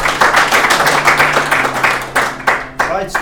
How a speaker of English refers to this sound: Have a nice round of applause, please.